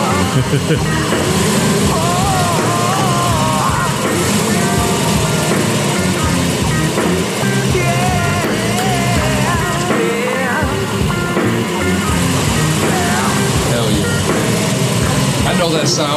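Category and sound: vehicle, old car engine running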